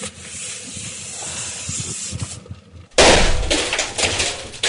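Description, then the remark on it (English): A steady gassy hiss builds, then a single sudden loud bang from a CO2 gas explosion bursts out, followed by a harsh rushing hiss of escaping gas. No one speaks. “There we go. Big bang. CO2 for you.”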